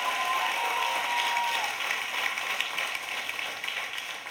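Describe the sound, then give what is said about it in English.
An audience claps their hands in sustained applause, given as praise to God for praying aunties, grandmothers and mothers; a dense, steady patter of many hands that runs evenly for the full few seconds and fades slightly toward the end. “We ought to give a bigger hand clap for that.”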